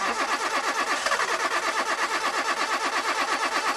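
A car engine cranks and starts, a loud, steady, rapidly pulsing mechanical churn heard alone for a few seconds, with no talking.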